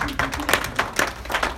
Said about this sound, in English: Good man, clap. Dat is een applausje.